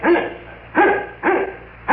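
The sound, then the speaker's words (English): A dog named Wolf barks repeatedly at the door to be let in, four loud, sharp woofs spaced at a fairly even rhythm, with no one talking over them. “Let him in before he breaks the door down.”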